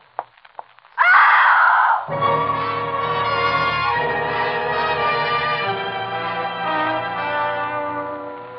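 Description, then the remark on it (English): After a near-silent moment, a sudden loud, piercing scream erupts, then gives way to a long, sustained ringing tone that holds steady until the end. “It was a good, loud scream.”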